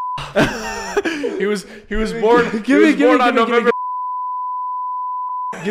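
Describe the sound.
A person talks excitedly, then a loud, steady, high-pitched censor bleep cuts in and holds for about two seconds on its own before speech returns.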